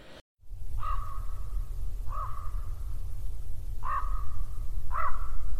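A raven caws four times in harsh, drawn-out calls spaced a second or more apart, clear over a steady low rumbling background, with no talking.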